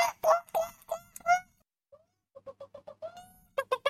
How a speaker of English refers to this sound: right outside my window. And those bloody chickens. Oh, my goodness. There's a disturbance right there. Those bloody chickens had transgressed. They had crossed the border from the back garden to the front garden.